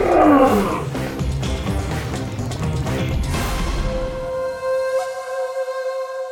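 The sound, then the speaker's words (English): A lion lets out a loud, rough roar that rumbles for several seconds, then fades into a steady sustained tone with no talking. “No, Carl, that's not Simba. Carl, no. Oh, that's rough. Bad kitty, bad kitty.”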